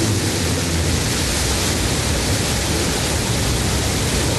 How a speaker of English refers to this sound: We have liftoff. The Shepard cleared the tower. And New Shepard has cleared the tower on our way to space with our first human crew.